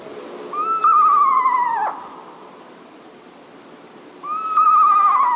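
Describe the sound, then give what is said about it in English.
A real screech owl gives two clear, quavering whinny calls, each a descending whistle lasting over a second, separated by a quiet pause; loud, with no talking. “We're going to hear what a real screech owl sounds like.”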